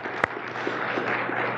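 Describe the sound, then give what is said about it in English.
A church audience claps steadily for the men who preached over the summer. It is a dense, even wash of applause with one sharp, louder clap standing out early on. No one speaks over it. “And so can we just give them a round of applause, man, for being faithful to the Word?”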